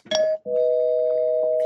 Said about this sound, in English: and I'll hit the spoiler bell. 3, 2, 1. If you don't want to know what happens here, you might want to fast forward.